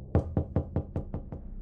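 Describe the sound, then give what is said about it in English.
A second series of seven quick, evenly spaced knocks thuds against a heavy wooden door in the morning, firm, each one short and dull, with nothing else sounding around them. “There came the second series of knocks.”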